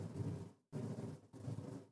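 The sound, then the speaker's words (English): A deep, heavy rumble of thunder rolls through in three surging waves separated by brief near-silent breaks, full and booming in the low end, with no voices. “So I just said Tom Riddle himself, and we had a huge clap of thunder.”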